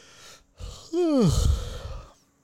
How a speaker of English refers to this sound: Now, all of y'all yawn. So that was for you.